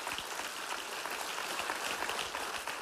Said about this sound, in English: Come on, let's clap right now and thank Lord.